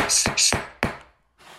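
A gavel bangs three times in quick, evenly spaced succession, each sharp wooden knock loud and ringing briefly before the next, with the last one fading out into near silence.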